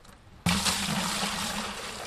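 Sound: water trickling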